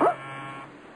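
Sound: doorbell ringing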